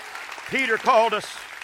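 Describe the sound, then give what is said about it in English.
A crowd claps steadily in the background while voices rise over it in brief cheering shouts, the clapping continuing as a dense, even patter throughout. “Clap your hands and rejoice to that.”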